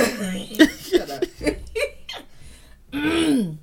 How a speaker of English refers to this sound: I'm sorry, my voice is going in and out. I be training every day. So clear your throat and talk, please.